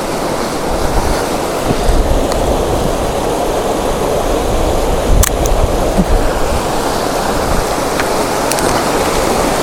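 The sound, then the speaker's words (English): Steady, loud wind buffeting a microphone outdoors on a walk by an old stone bridge, a dense rumbling roar heavy in the low end that runs unbroken throughout, with a few brief sharper gusts and thumps and no voices. “And now it's windy.”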